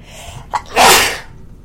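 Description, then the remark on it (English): A single loud, forceful sneeze: a quick sharp intake of breath followed by an explosive, breathy burst that fades out quickly, with no talking. “Excuse me, I have the loudest, manliest sneeze.”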